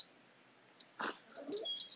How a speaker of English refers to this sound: And you will hear background noise because both of my dogs are losing their mind because I left them for more than an hour.